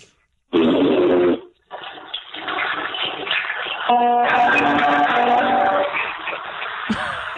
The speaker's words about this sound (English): Fart sound, flush a toilet, and then I'll hit a chord on the guitar and then hang up.